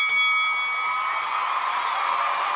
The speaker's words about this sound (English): Well, it's the 225th running of the Promoter 101 podcast. Let's start the bell now.